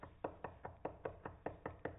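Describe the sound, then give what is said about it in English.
Steady, rapid knocking on a wooden surface, about ten sharp knocks evenly spaced over two seconds, fairly loud with no voices. “And he just kept knocking.”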